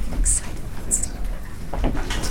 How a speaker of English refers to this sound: The doors open.